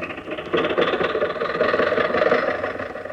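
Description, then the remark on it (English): A car engine runs steadily with a rattling, buzzing rumble, swelling a little louder after the first half second and holding its even drone throughout. No one speaks. “Now, get in the car.”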